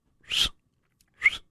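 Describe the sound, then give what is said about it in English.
Two short, breathy blows of air, each a failed try at a wolf whistle, hissy with only a faint hint of tone, separated by about a second of silence. “In the country of French, they're looking at making it illegal to, quote, wolf whistle at women.”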